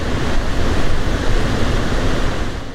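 Steady, loud white noise: a dense, even hiss spread across the whole range from low rumble to high sizzle, holding constant for nearly three seconds with no voices.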